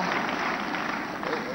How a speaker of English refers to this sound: You clap for everything.